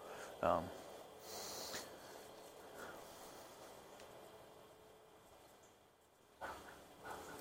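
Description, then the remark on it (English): A dog barks at a person in their own yard, a short sharp bark near the start and another a few seconds later, faint against a quiet outdoor background with soft rustling. “That dog's barking me in my own yard.”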